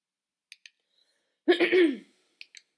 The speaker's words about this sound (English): Sorry, I had to cough them, so I had to mute myself for a quick second.